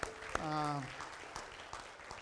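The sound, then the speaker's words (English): A crowd claps together in a round of applause of appreciation for a young woman who shared her talents, a steady patter of applause with a few sharper claps, while a voice briefly calls out over it near the start. “But how about a round of applause of appreciation for sharing her talents with us?”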